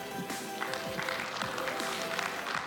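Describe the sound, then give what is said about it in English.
An audience at a church service claps and snaps their fingers together, a dense, steady patter of sharp crackling hits mixed with a few murmuring voices, evenly loud throughout. “I liked the mix of snaps and claps.”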